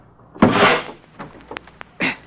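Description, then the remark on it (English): A wrecked car door is forced open in a Boston Blackie radio drama: a loud grinding scrape, then a few sharp metallic clicks and a final short screech, with no talking. “Just get this door open.”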